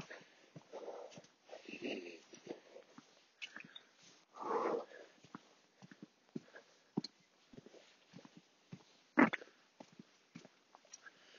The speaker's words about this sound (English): And what you can hear now is just the heavy clump of tired footsteps. There's some nice stones here in the path that I've somehow missed in the past, but maybe just now it's a bit damper, I can get them out a bit more easily.